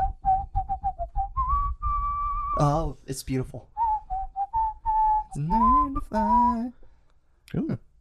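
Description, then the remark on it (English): A person whistles a song melody, clear pure notes stepping through the tune in short phrases, interrupted midway by a few animated voices exclaiming before the whistling resumes briefly. “Someone give me a song I know. I know whistle it as long as I can”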